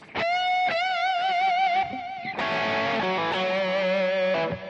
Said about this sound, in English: So that really gives your playing more sustain and more depth and dimension, and that's going to help you sound better as opposed to, you know, playing with a dry signal. Right? It doesn't sound as good. Let me put the reverb and the delay back on.